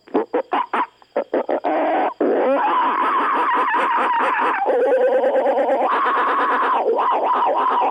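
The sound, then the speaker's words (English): A person imitates monkey calls: a run of quick, choppy hoots, then long, loud, shrill screeching wails that rise and fall in pitch, with no ordinary talking. “Cut the monkey calls.”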